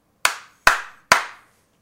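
Three sharp hand slaps land in an even, steady rhythm, each a crisp, bright smack with a short decaying tail, alone with no talking.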